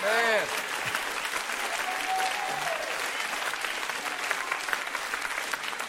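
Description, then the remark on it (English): An audience claps in a dense, steady patter for several seconds, with a brief voice rising at the very start before the applause carries on alone. “Some of you didn't even clap well because you are like, hold on 1 second.”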